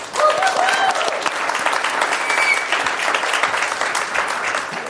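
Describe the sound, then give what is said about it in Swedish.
An audience claps steadily for about five seconds, a dense, even wash of many hands at a fairly loud, constant level, with a few brief whistles or cheers near the start. “Gud, vilken hjärtlig applåd.”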